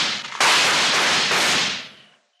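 A single loud gunshot cracks out suddenly after a moment of quiet, its harsh, noisy blast hanging on for over a second before fading away. No voices are heard.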